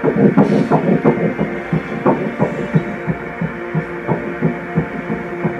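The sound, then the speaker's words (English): A fetal heartbeat through an ultrasound Doppler: fast, steady whooshing pulses, about twice as fast as an adult's, over a constant rumbling hum, fairly loud with no one talking. “And that's a perfect, nice, strong heartbeat for this stage.”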